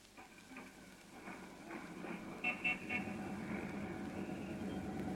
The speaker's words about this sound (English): Riding home like this on top of a bus? Why not? It's kind of nice.